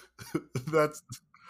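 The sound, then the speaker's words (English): A person lets out a quick series of loud, throaty coughs, several short voiced bursts with one drawn-out hack in the middle, sounding exaggerated, like a vocal imitation of a cough. “just has a really loud cough somewhere.”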